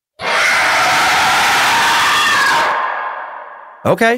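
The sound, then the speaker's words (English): A sandhill crane's harsh, screaming call rings out loud for a few seconds, a rough rattling cry that fades away before a brief voice starts at the very end. “Now, this is the sandhill crane. It screams.”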